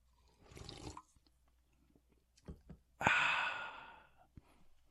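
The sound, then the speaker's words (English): A Red Bull energy drink can (the blue one) is cracked open: a breathy exhale and a few small clicks, then a sharp pop followed by a loud fizzing hiss that fades over about a second. “ASMR kids. Caffeine. Here's the Red Bull.”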